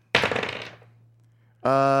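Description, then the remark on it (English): Dice dropped from a height for a fast, hard roll clatter sharply for about half a second, the rattling quickly dying away into quiet, before a steady, buzzy electronic tone starts up and holds. “Use gravity to just like drop it. Okay, let's try this.”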